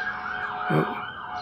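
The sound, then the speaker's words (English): A fire engine siren wails steadily as it passes, a high sustained tone rising and falling slightly, with a brief low rumble partway through. No one speaks. “Well, I hope that's not our house that's on fire. No, it's going by.”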